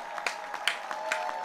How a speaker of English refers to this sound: Okay, please clap.